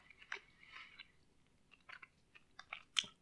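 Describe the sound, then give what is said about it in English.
Wet chewing of a soft, chewy watermelon sour candy cube, with irregular sticky smacks and squelches over a few seconds, quiet overall and with no talking. “Good chew. Definitely more sweet than sour.”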